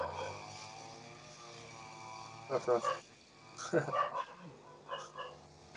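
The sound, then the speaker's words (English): A dog barks in the distance in three short bursts of a few barks each, spaced a second or so apart, over a quiet background with faint low voices. “Dukkha, the other dog is over there barking, and Lucky under my feet is about to go check it out, and I've got her.”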